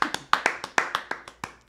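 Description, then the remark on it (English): Brief applause for Red Sox legend Lou Merlone, made of about nine sharp handclaps at an uneven, quick rhythm, crisp and fairly loud, with no voices over them. “Round of applause.”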